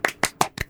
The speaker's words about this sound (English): Everybody right now, wherever you are, let's all give ourselves... I feel like a school teacher. Let's all give ourselves a round of applause. Have a round of...